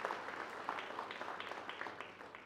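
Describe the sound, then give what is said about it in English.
The audience of St. John's church claps in steady applause, a dense patter of many hands that holds fairly even for a couple of seconds before easing slightly at the end. “Yeah, we can clap for that. Clap for yourselves, because this was...”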